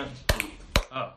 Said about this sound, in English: The movie that we're doing is Adam's Family Values. I don't know how to snap. I'll clap it. You can clap it.